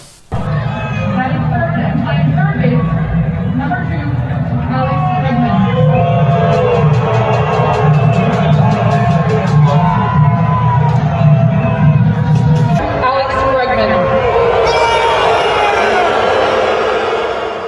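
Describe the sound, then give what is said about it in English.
A large baseball stadium crowd of fans roars and boos loudly at the Houston Astros throughout, with steady rhythmic banging on trash cans to taunt the team pounding through the din, the noise dipping slightly near the end. “Everywhere the Astros went, they were faced with booing and fans taunting them by banging on trash cans.”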